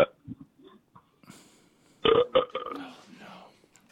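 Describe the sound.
A loud, rough burp erupts in two quick gurgling pulses, surrounded by quieter murmuring voice sounds before and after.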